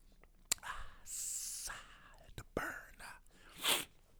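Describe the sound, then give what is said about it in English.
Someone takes a few quiet sips of Crown whisky, with wet slurping hisses, soft lip and glass clicks, and a breathy exhale at the end. “I'm going to talk about how the fuck I feel right now as I sip on my crown.”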